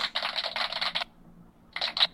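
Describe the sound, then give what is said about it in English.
Thin, crackly applause from a sound-effects machine that needs new batteries plays in two bursts, a steady one-second stretch, a brief pause, then a shorter burst, with no voices. “I gotta get new batteries for the sound machine. But anyway, that's supposed to be applause.”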